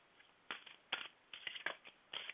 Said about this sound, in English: All right, let me shuffle these cards.